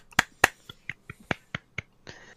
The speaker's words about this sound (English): I'm clapping.